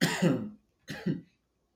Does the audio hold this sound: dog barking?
no